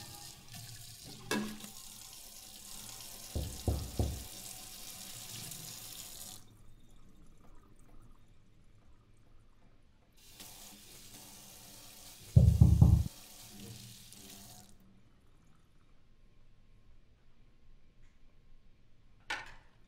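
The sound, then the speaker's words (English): Shower water runs in two steady hissing stretches, each lasting several seconds, broken by a quiet pause, with a few dull knocks and thumps. No one speaks. “I'm gonna take a shower.”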